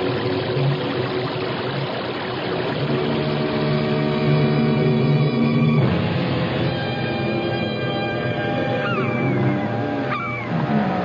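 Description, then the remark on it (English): A loud, unbroken roar of a churning, rushing whirlpool of water, dense throughout, with faint whistling tones sliding over it near the end. “It sounds like a giant waterfall. There are no falls around here. It's a whirlpool.”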